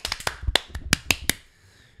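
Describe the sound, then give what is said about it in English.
Several people clap out of sync: about eight or nine sharp, ragged claps within a second and a half, uneven in rhythm and loudness, then quiet. No one speaks. “Way too many Luke P's trying to clap.”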